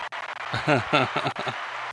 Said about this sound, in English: So let me get the applause for these sheep. Wait, applause. The sheep. You got the sheep.